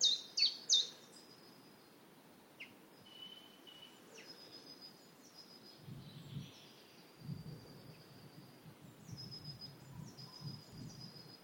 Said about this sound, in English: I don't know what that really high-pitched thing, I don't know if that's... I'm imagining that's a great tit.